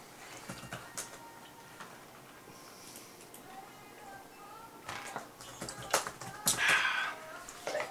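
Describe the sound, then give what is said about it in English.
A single sharp sneeze bursts out near the end, loud, after a stretch of quiet ticking clicks and faint background voices. “Bless you. Bless you.”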